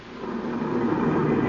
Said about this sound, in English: That's the police car, Ralph.